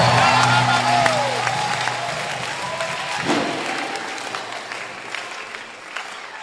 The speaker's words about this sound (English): Clap your hands, all ye people, and shout to the Lord with the voice of triumph.